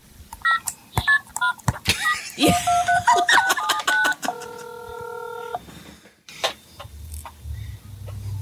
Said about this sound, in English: What sound does my one-year-old daughter's cell phone make?